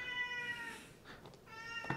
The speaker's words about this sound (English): Yeah, there he is. Kitty Cat says bye, too.